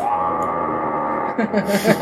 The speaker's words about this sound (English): what I recommend is taking a pillow. I've got a pillow in my hand right now. And then you scream into the pillow.